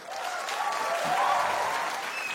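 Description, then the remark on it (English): A live show audience claps steadily for a couple of seconds after being asked to clap if they came from TikTok, a dense, even wash of many hands with no voices standing out, holding at a moderate level throughout. “Clap if you're here from TikTok.”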